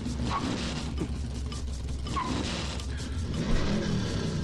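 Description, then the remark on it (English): Car engines rumble steadily while short tire squeals and mechanical creaks cut in and out, a dense, continuous mix of cars in a movie scene played from a VHS copy, lurching, jerking and skidding about without really going anywhere, with no talking. “Cool cars.”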